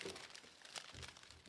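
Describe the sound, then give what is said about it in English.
Newsprint paper being crumpled, a quick burst of dry crinkling and crackling that rustles continuously for a moment with no voices. “Or crumpled.”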